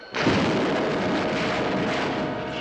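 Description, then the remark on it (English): A loud explosion bursts in abruptly, then keeps roaring as a dense, sustained rumble with a crackling texture for a couple of seconds. No voices are heard. “Could the explosion have blown them to bits?”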